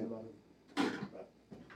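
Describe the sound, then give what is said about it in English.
A door is opened slightly with a short wooden scrape and knock, followed by a fainter second bump, with a man's voice talking just beforehand. “Can you leave the door? Just a tad bit.”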